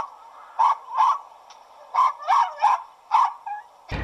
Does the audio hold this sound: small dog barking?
yes